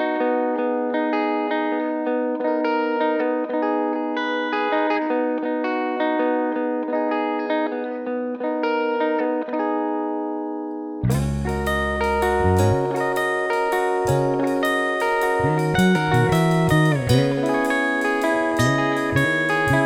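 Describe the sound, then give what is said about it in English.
A curse-free version of the band song, recorded at Spice Rack Studios, plays without vocals: a steady, bright harmonic guitar-like intro for about eleven seconds, then drums and bass crash in and the full band continues loudly with a driving rhythm. “This is the na na na na shit curse-free version of …, recorded right here at Spice Rack Studios.”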